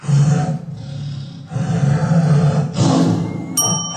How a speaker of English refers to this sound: Lion? Close. Tiger. Yes.